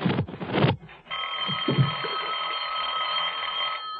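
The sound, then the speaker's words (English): A few dull thumps and scuffs, then a telephone bell starts ringing, a loud, steady metallic trill that carries on unbroken for several seconds with no talking. “I'd better answer it. It might be the operator.”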